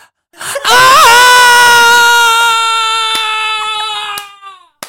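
A man lets out one long, loud scream close to the mic, held on a steady high pitch for about four seconds before cutting off abruptly.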